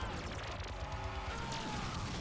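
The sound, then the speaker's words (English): A crashing explosion sound effect of a slightly pink on-screen explosion after the Dino Fury Megazord's Mega Hammer Slam, a dense burst of noise with a deep rumble that stays loud for about two seconds, with a faint tonal ringing in the middle. “Oh, notice the slightly pink explosion, too.”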